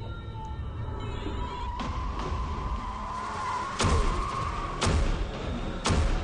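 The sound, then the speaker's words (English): Mario Kart video game racing sounds: a steady drone of revving kart engines with tire skids, punctuated by several sharp thuds and bursts spaced a second or so apart, loud, with no talking. “We're playing Mario Kart, right?”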